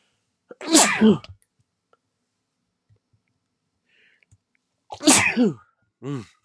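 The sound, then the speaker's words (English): Two loud sneezes about four seconds apart with quiet in between, the second followed by a brief voiced sound. “So with that being said, hold on, I have to sneeze.”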